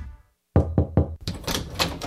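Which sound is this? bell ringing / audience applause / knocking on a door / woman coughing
knocking on a door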